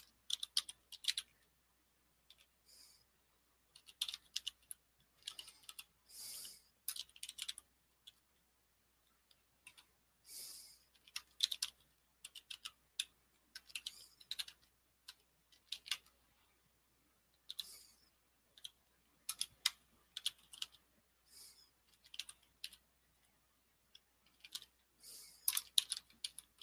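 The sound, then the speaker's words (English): Bursts of quick, light clicks from typing on a computer keyboard, coming in irregular flurries with short pauses between them, fairly quiet, with no voices. “I'm just typing in stuff here for a second here.”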